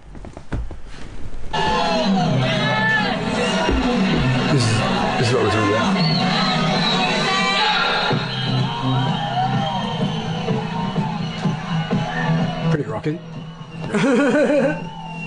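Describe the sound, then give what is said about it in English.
A large festival crowd roars and cheers continuously, dense layered voices with whoops and shouts, swelling loud for several seconds before a brief dip and a final burst. “It was actually really good to see the crowd.”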